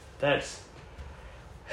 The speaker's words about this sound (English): Excuse my yawning.